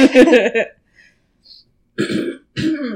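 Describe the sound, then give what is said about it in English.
A person clears their throat: a harsh rasping burst, a brief pause with faint noises, then two more gruff throat-clearing grunts in quick succession. “Oh, got crap in my throat, guys. I'm sorry.”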